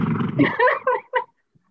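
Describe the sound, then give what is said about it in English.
A cat wanting to be let out meows in a quick run of short, harmonic cries, the last one brief and clipped, following a low rumbling start, then silence. “I got a cat wanting out.”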